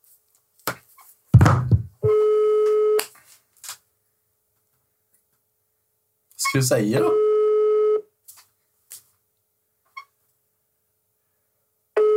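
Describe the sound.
A steady electronic phone tone sounds twice, each lasting about a second, after a soft thunk, with brief bits of talk between them, as a phone call is placed without a hidden number.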